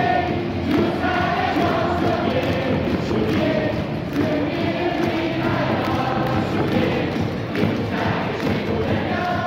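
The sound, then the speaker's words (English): A large crowd at a KBO baseball game roars continuously at full volume, with rhythmic chanting and thumping beats running through the dense, loud wall of cheering for the whole stretch. “people watching on ESPN right now in the U.S., they're really missing out on the fan atmosphere in the KBO”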